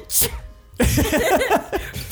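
human body sound, sneeze

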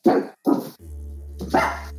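animal, dogs barking

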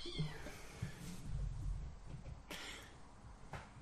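animal, cat meowing

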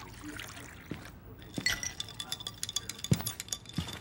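household object, glasses clinking

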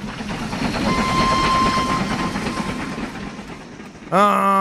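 vehicle, train running on rails

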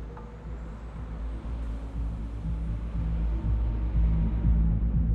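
vehicle, street traffic

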